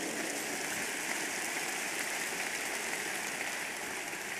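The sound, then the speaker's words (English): An audience claps in praise to the Lord, a dense, steady wash of many hands that holds evenly throughout with no individual claps standing out and no voices over it. “Give the Lord a big hand of praise.”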